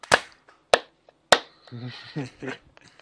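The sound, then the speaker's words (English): Three sharp, loud hand claps, made as a sync marker for lining up audio while editing, land at a steady, even pace, each a crisp snap with a short ring-off, and then a voice starts talking right after. “I'm going to use the shift tool to shift it so these claps are lined up here.”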